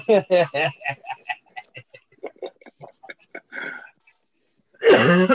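A loud, harsh cough from a man who has had a cough for three days bursts out near the end, after a stretch of choppy, murmured vocal sounds.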